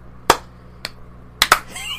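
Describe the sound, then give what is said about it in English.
A few sharp hand claps land at uneven moments instead of together, two of them nearly overlapping, as people try and fail to clap in unison to sync the audio for a video. Nobody speaks. “If you could try to, like, clap in sync with me, so that way it's easier to get the audio, so.”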